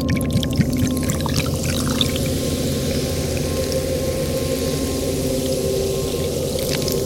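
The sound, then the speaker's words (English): A 50-50 mix of Pepsi cola and milk pouring steadily into a glass, a continuous gurgling stream with a faint rising ringing tone as it fills, lasting several seconds with no voices. “I was just stopping to pour myself a glass.”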